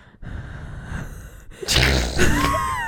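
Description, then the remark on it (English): A loud, close gasping breath blasts right into the microphone, a sudden harsh rush of air after a quieter stretch of low rumble, followed by a second strained intake. “Are you having another breathing stroke? Into the mic?”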